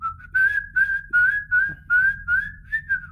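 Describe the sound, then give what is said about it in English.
A person whistles a short tune up close, a steady run of about eight pulsing notes near the same pitch, clear and fairly loud with no talking. “Like, no, I'm going to be whistling straight into your eardrums.”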